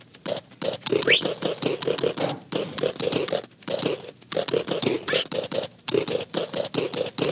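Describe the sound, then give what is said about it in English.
Rapid computer mouse clicking repeats in quick bursts separated by brief pauses, each burst a dense run of sharp clicks with no talking: repeated right-clicking on a bird with wheat seeds to tame it. “You just keep right clicking until you get hearts.”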